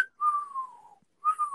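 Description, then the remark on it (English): A person imitating a butcher's whistle whistles two tones, each starting high and sliding gradually downward, separated by a short gap. The sound is fairly loud, a steady pure tone with no talking. “It sounded more like a burglar alarm than a whistle.”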